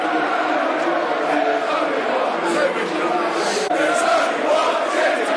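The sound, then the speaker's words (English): A large football stadium crowd at a Fulham match against Millwall applauds a foul that drew a yellow card late in the game, steady, dense applause and murmuring, a broad wash of clapping and voices holding at an even level for several seconds. “Fair-minded applause from the crowd around me for that.”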